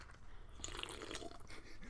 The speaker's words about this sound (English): I would say that they are the unofficial drink of the Fireside Podcast. So, Let me take a sip of this real quick.